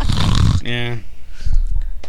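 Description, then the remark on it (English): A woman makes a loud, raspy mock snore, a single rough throaty snort that ends in a brief buzzing tone, followed by people talking. “The way she did that snore, that was a Xanax snore.”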